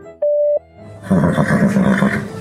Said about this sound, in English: You have reached the Horse Radio Network voicemail line. Please leave your voicemail after the tone.